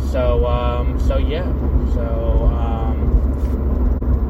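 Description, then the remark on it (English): Steady, loud low rumble of road noise inside a car driving home in traffic, continuous throughout, with a voice speaking over it intermittently. “Always a good sign when you're driving home, and to take away the estimated time to arrive from somewhere, from that board, which means it's definitely traffic.”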